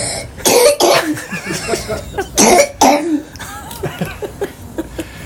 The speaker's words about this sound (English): Cough into the mic.